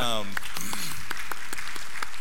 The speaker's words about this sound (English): Yeah, you can clap. Or, yeah.